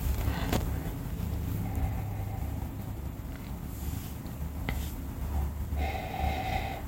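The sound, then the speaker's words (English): Breathy sniffs as someone inhales deeply from a glass of pale pink wine, a few airy draws over a steady low rumble, with no talking. “As we sniff into our glasses, you smell.”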